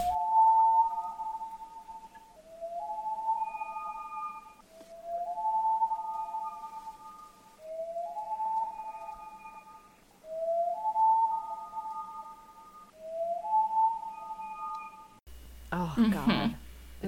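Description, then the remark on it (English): A series of haunting bird calls: six evenly spaced, mid-pitched tonal notes, each sliding upward then holding steady with faint overtones, followed at the end by a short, harsh burst of noise. “I shared two calls because these birds have so many different calls and they're all super fun and exciting.”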